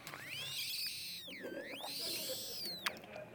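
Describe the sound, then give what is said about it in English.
A thin, continuous whistle from something draining from the bottom up, its pitch sliding up, dipping low, then climbing again over a few seconds. Faint and steady with no voices. “If you hear a whistle, it's because it drains from the bottom up.”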